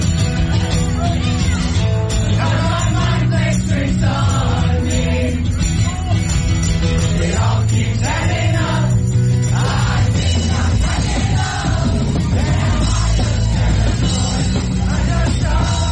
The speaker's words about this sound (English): Sounds like the whole subway station is singing along with them.